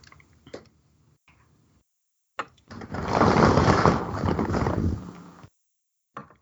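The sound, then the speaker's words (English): A leather couch gives a long, rough, fart-like squeak lasting about three seconds, buzzing and loud, with a few short creaks and taps before and after it. “That just sounded like farting, that's why. Oh, the couch.”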